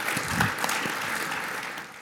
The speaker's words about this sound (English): Thank you. And okay, slow clap.